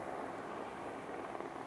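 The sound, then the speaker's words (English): A police helicopter on COVID-related duty drones somewhere overhead, a steady, broad rumbling whir that holds at an even level throughout, with no voices over it. “We've got a helicopter in the back, a police helicopter doing their thing for the COVID.”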